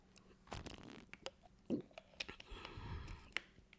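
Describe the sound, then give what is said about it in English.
Quiet mouth sounds of someone taking a sip from a drink, with small wet clicks, a soft slurp and a swallow, then light breathing. No one speaks. “I have to take a sip, excuse me.”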